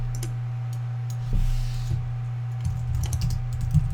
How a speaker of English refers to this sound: So yeah, we can start a new file here. We can start typing.